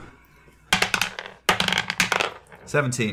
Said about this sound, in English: So grab the dice and roll it.